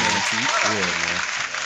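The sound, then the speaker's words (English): A steady round of applause, dense and fairly loud throughout, with voices talking over the clapping. “Yeah, round of applause.”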